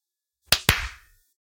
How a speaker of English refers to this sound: Gonna clap. I guess clap. I'm gonna be real. I only use the front claps. We don't have to clap. Nah, it's tradition.